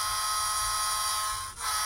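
A novelty NHL pen fitted with a fun drink-mixer (juice-blender) gadget gives off a steady, harmonic-rich electric buzz, loud and unbroken, with one short dip in the tone just before it resumes. No one speaks.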